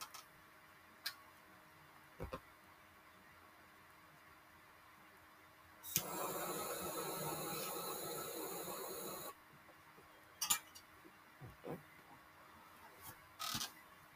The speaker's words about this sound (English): I like using Nene's torch lighter better than my torch lighter, because I don't know, it's just more powerful.